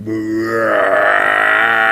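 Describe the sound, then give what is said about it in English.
A person imitates a deer's roar with one loud, sustained, guttural bellow that holds steady and grows rougher toward the end, with no talking around it. “I'm like, all right, I'm going to give him half of a roar.”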